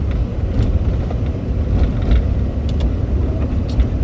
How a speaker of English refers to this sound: Oh, it's cold. I'm very thankful to be in my truck because it is warm. This heater is a pretty good heater.